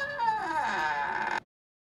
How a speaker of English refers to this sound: Was that the door?